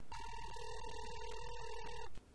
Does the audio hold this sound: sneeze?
no